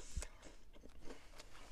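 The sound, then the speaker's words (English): Quiet chewing of crunchy Scooby Snacks, with several short crackly crunches spaced irregularly over a couple of seconds and no talking. “I don't know what happened listening to my, like, chewing. It might annoy someone out there. Yeah. We're eating snacks.”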